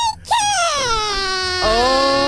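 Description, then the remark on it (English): A dog named Buddy whimpers in a studio by the microphone, in two long, high-pitched whines, each sliding downward and then holding steady, fairly loud with no talking over them. “You hear tiny little feet. What's going on? Look at the desk.”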